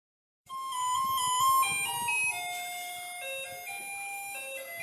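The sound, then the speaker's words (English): A bright, tinkly electronic theme tune plays alone, a remix of Taiwan's garbage truck song, stepping through sustained chime-like notes in a simple tune, loud, with a faint low rumble beneath. “For those in Taiwan, you'd recognize that as a remix of the Garbage Truck song.”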